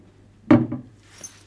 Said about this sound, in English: So here you can see we open the doors, double doors, and we have one shelf, two pigeonholes, and what looks like a drawer, but actually is not a drawer. It is a drop front, another drop front, and this will open the strongbox.